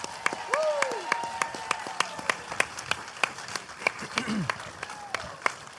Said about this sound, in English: We are going to bring out our guest, a Vancouver local. Please give a huge, huge round of applause for